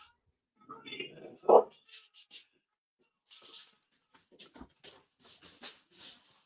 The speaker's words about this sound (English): Oh, mom must be home. The dogs are going nuts.